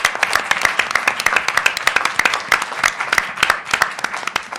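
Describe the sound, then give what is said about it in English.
An audience applauds the event staff at the close of a panel, steady for several seconds, dense overlapping claps forming a bright, crackling wash with sharp individual hand claps standing out throughout. “All deserve a round of applause for making this run so smoothly.”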